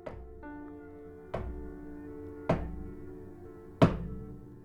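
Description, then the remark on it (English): Four slow, heavy knocks on a door, spaced over a second apart, each landing with a solid thud over a steady low hum in the background. “They knock on your door, like, very slowly.”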